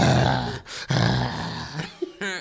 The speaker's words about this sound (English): Like, why is he growling?